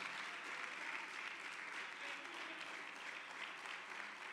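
crowd, audience applause

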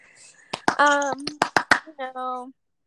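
crowd, hand clapping

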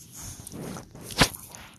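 animal, dog making noise

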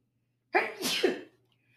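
human body sound, sneeze

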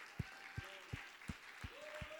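crowd, audience clapping hands

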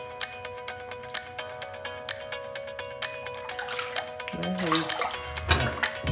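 household object, water sloshing

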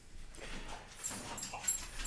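animal, dog barking

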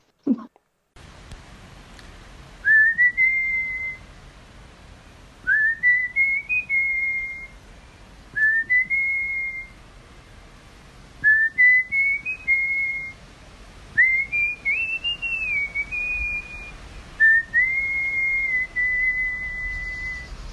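human body sound, person whistling a tune

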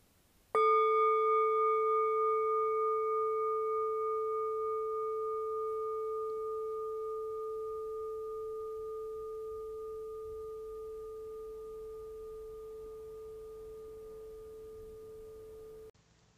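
signal or alarm, meditation bell ringing

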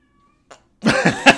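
animal, cat meowing

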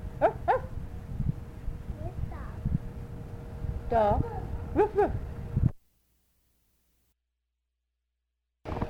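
animal, dog barking and whimpering

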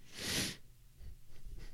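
human body sound, sniff

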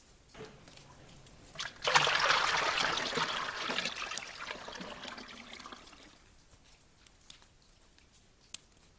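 household object, water trickling

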